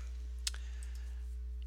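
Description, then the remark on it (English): A single sharp click of a computer mouse or key sounds once against a quiet background with a steady low electrical hum, as someone types into a web search on a computer. No one speaks. “If you type in www, type in the actual address.”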